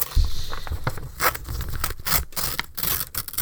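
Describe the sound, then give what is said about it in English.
Paper crinkling and rustling for ASMR in a steady, irregular stream of crisp crackles and scrapes, with a few sharper bursts, fairly loud and with no voices. “ASMR. Fuck shit. The paper goes.”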